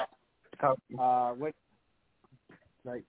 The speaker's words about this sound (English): My dog's barking in the background.